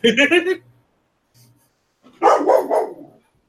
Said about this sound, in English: Of course my dog starts barking.